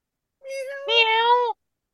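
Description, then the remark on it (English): A single drawn-out cat meow, clear, rising into a louder second half before stopping abruptly, with silence on either side. “That was the real star of the show, the kitty cat.”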